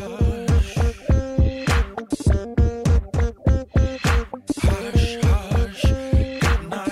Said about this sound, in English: It's a rhythm machine, and it has a compression ratio in it that is ferocious.